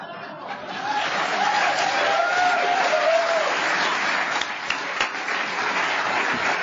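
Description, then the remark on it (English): Steady audience applause, a dense wash of clapping that starts softly and holds loud for several seconds, with faint cheers and chuckles scattered through the crowd. “Everybody applause.”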